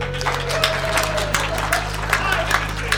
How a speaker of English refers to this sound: Applaud, people.